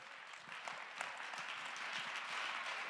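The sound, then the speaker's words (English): A crowd claps their hands in praise to God in sustained, dense applause, a steady wash of many overlapping claps at moderate loudness with no talking over it. “Clap your hands and give God.”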